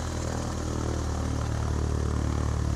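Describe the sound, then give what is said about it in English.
A voice imitates a propeller airplane engine starting up after the propeller is thrown, a loud, steady low rumbling drone with a rough clattering texture that holds for about three seconds, with no talking. “And so what people would do, I'll kind of get away from the mic for this, is they'd be like, prop check, boom, and then it would just start up.”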